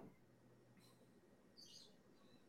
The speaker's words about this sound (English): The birds are in action in the background.